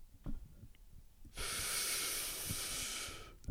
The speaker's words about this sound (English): You weren't even out of your breath. That tells me that you are breathing. I take big breaths at the beginning.